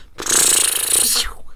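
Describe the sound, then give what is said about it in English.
A person voices a rocket ship with a single loud, sustained, hissing whoosh lasting about a second. It is rough and breathy and cuts off abruptly. “It sounds like a rocket ship.”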